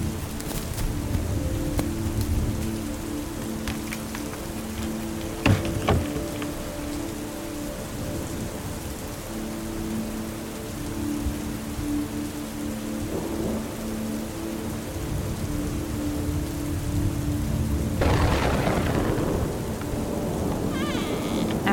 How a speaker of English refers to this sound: I tried to wait for the rain to die down some, but it didn't look like that would be anytime soon.